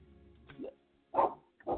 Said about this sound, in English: sorry, y'all, got a barking dog.